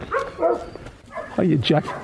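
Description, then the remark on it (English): A dog named Jack, one of five dogs rescued in County Monaghan, gives a few short, high barks and yips in quick succession, loud, with brief pauses between them. “This guy here now, he was one of five dogs that I rescued down in County Monaghan.”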